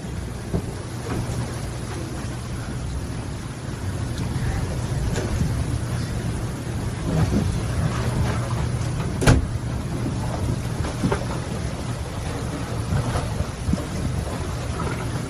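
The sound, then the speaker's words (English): A boat bangs against another boat at about 5 in the morning amid a steady roar of wind and rain, with one sharp, loud knock standing out and a few fainter thumps around it. No one speaks. “They had to jump on that, set it out because it was crashing into his boat.”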